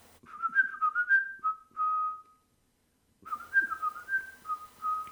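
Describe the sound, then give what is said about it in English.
A bus driver's cheerful whistled tune, clear and mid-pitched, hopping between a few notes in a lilting rhythm, breaking off for about a second before the melody resumes with a little more background noise. “But then, in my mind's ear, I suddenly heard the driver's cheery whistle. You see, he always gives us a little tune.”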